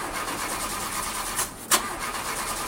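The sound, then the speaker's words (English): A car engine cranks over and over in a steady, grinding rhythm without catching, briefly pausing before a sharp click, then cranking again, fairly loud with no voices. “Car not starting?”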